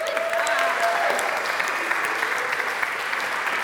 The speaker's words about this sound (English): Snaps and claps to you, because we sent kids books and school supplies and toys and handwritten notes.